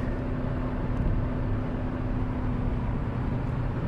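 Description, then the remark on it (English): Steady, loud road roar inside an old 1990s Honda Civic driving on the highway, a constant low rumble with a faint engine hum running through it and no voices; the car has little isolation from outside noise. “So I'm driving on the highway now, which must be terrible on the ears, because this car is old.”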